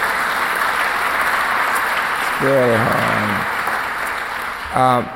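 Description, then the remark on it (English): A crowd applauds teachers steadily throughout, a dense even wash of clapping, while a voice calls out briefly over it twice, once midway and again near the end. “And let's give teachers a round of applause.”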